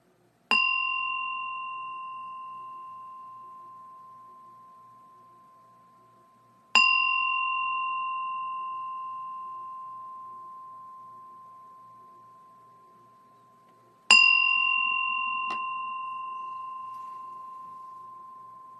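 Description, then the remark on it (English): A meditation bell is struck three times at the start of a sitting meditation, each clear metallic tone ringing out and slowly fading before the next strike, with about seven seconds between rings and no talking. “And then I'm going to ring it three times now. And at the end, I'll ring it two times to bring an end.”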